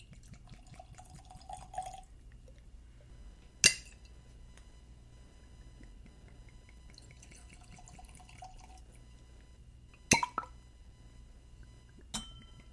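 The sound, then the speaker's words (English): Flagship bourbon trickles quietly into tasting glasses in two short, soft pours, punctuated by a few sharp glassy clinks, with no one speaking; the bottle has a glass topper rather than a cork. “So let's get these poured.”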